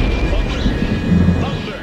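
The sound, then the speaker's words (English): A loud thunder clap rolls into a dense, low rumble that holds steady for about two seconds, with a thin sustained tone humming above it. “Thunder!”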